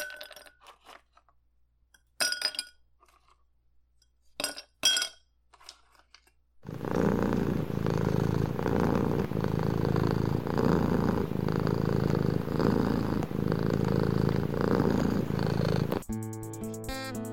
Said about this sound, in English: Is there any more comforting sound in the world than a cat's purr? Oh, well, I know. But there is a scientific reason as to why a cat's purr is so comforting.